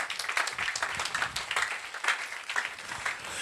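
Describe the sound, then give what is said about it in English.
An audience claps steadily for a few seconds, a dense, crackling wash of many hands with no clear individual beats, moderately loud throughout. “If you are clapping, you can clap very well.”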